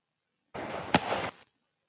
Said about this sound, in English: Well, that's the fireworks.